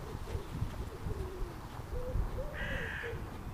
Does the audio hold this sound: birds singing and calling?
yes